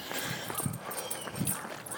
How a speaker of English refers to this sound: Oh no, here comes the Dalmatian of Doom.